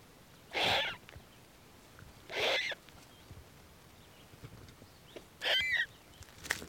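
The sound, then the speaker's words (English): Two fluffy turkey vulture chicks in a nest, a few feet from its entrance, let out three harsh, breathy hissing bursts, each about half a second long and spaced a couple of seconds apart, against a quiet background. “And right there, just a few feet from the entrance, two fluffy little turkey vulture chicks.”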